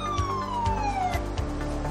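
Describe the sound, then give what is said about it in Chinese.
A Hong Kong Police vehicle, a van-based police car, sounds its siren, wailing steadily with its tone sliding slowly downward, over a low rumbling engine and periodic thumping pulses; no one speaks. “每次有事故发生的时候，大家都听到它闪住灯呼呼声地经过。”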